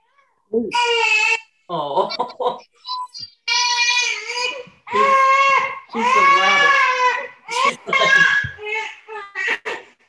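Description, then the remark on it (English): A baby girl cries and screams on a Zoom call in a string of loud, high-pitched wailing bursts, some long and strained, others short and choppy, with brief gasping pauses between them and no talking. “She's not the first screaming baby we've had in the core room.”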